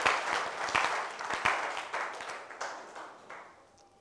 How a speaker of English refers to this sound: Why don't you clap for the Lord as you take your seats?